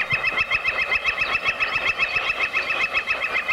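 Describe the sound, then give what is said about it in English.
A reverb tremolo effect: a sustained, washy tone that pulses quickly and evenly in volume, about five times a second, with a bright ringing upper layer and a soft throbbing low end. “Okay, here's the reverb tremolo.”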